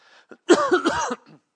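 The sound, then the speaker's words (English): A raspy bout of coughing and throat clearing, a short harsh burst lasting under a second, preceded by a faint breath and trailing off into a soft rasp. “I've got a cough going on here.”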